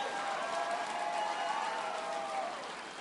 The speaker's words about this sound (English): But guess what? I can clap my hands and I can get my strength moving towards God. Come on, give God a hand for that.